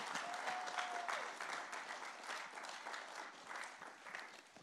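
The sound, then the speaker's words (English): An audience breaks into sustained applause and cheering for a skills and business training program: a dense wash of clapping with a brief whistle or cheer early on, holding steady for several seconds before tapering slightly. “Yeah, that's okay. You can cheer for that.”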